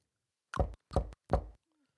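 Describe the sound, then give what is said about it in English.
A voice imitates knocking with three short, evenly spaced percussive mouth sounds, fairly loud, followed by a brief quiet tail. “Knocked instead of making noises with your mouth, that might.”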